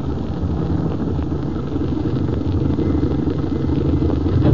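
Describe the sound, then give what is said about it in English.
A car engine rumbles steadily at idle, fairly loud, with a low mechanical clatter; it swells slightly near the end as the car comes to a stop. No voices. “Go a little more, then stop. We'll walk the rest of the way.”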